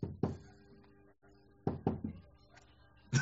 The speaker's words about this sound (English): and then you get that little knock on the door.